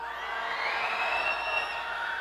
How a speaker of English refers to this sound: Y'all ready on three? I want to hear shrieking, screaming, spirits being cast out. One, two, three.